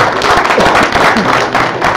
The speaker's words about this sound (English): Let's give him a big round of applause for coming.